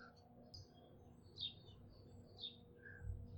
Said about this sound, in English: There is a song sparrow eating away at the bottom of the feeder.